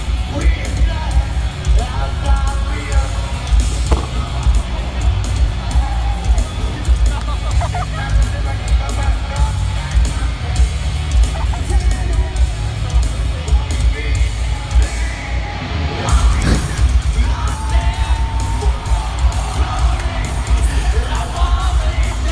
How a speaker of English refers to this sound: Dude, you can hear people laughing. I fucking felt bad. Did you hear that? A big thud? Yeah, that's him going to put his foot on a monitor and he misses it and then goes ass over tea kettle off the stage and plops.